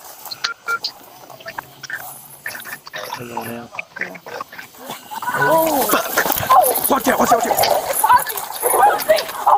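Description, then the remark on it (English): A pit bull attacking a woman: loud snarling and growling break out midway into a continuous, frantic scuffle, with distressed human cries and shouting mixed in until the end. “So I think she's getting attacked by the dog.”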